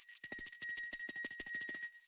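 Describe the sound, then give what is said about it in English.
A bell rings loudly and rapidly for about two seconds, a fast, continuous clatter of strikes with bright, sustained metallic tones, alone with no voices. “Okay, I'm going to ring the bell. Sorry to our audio engineer, Nico, for this loud bell ringing.”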